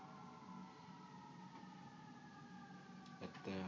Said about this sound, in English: Attending to the sound of the siren, take you deeper.